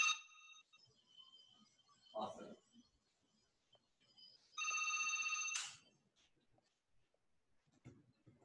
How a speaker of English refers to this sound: On this ring. Let me just like hang it up. I just don't want it to ring on the phone. Hang on 1 second.